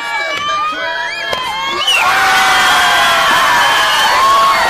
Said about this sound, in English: Big twist, 540. Come on, crowd, fire up. Keep the noise going.